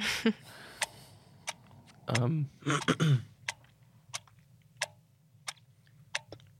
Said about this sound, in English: I think we need the clock for this one.